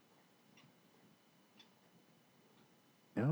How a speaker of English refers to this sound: What's he doing? I literally hear his clock ticking, really taking away minutes of the episode, and he's not back.